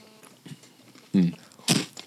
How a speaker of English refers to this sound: he hates the sound of crunching and slurping through the headphones.